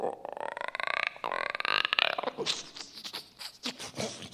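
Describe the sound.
A person imitates a frog with their voice for an animated creature, a badger frog: a raspy, rattling croak drawn out over a couple of seconds, followed by a few shorter, breathier croaking grunts.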